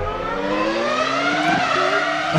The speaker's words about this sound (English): F1. It sure is. F1 engine.